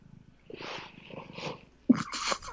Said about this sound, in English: Big purrs are much appreciated from the audience. He always has to give his input.